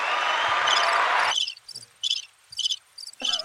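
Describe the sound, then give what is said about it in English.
A burst of broad hissy noise gives way to a cricket sound effect, played at the press of a button, chirping in short, high, evenly spaced trills, about five pulses, clear against an otherwise quiet background. “Sounds like bats. Is that bats? Crickets. No, crickets.”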